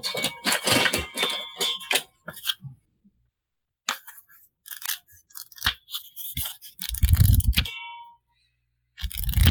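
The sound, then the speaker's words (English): Paper money bills ($100,000 from a leather valise in a car trunk) being crinkled and handled, in crisp, crackly bursts separated by short silences, with a louder rustling flurry near the end. No one speaks. “How do you make money sound like that? It's made of fucking paper.”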